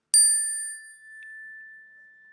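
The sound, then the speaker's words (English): A single chime is struck once during a service of remembrance in an audience, a bright metallic ding that rings out clearly and sustains with a long, slowly fading tone, with no voices present. “So at the sound of the chime, you're invited to speak their names into our shared sanctuary.”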